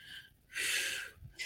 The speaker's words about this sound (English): Trying to calm myself as best I can. Getting out the bad air, the bad energy, and getting in the good air and the good energy.